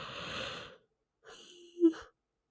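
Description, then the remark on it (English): A single yawn: a long airy inhale, a brief pause, then a breathy exhale that swells into a short voiced groan before fading out. No talking. “Oh my goodness, I'm so sorry. I like can't stop yawning now.”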